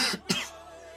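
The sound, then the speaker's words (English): Two quick, harsh coughs in close succession from a speaker leading a prayer service, fairly loud, followed by quiet room tone with a faint steady hum and no talking. “But I'm trying to control cough, you know.”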